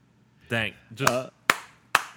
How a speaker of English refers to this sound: Slow clap.